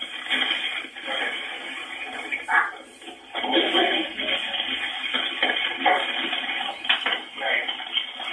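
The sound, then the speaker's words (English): Steady crackling static from an infrasound phone fills a thin, telephone-quality recording for several seconds, hissing and sputtering continuously with faint muffled voice-like sounds buried underneath. “Listen to the static at the end here. Hear it? That is the infrasound phone.”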